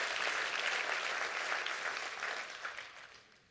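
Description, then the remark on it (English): A church audience claps in celebration of God's presence, a dense, steady wash of many hands applauding together that holds strong, then gradually thins and fades toward the end, with no voices over it. “Come on, clap your hands real big and celebrate that.”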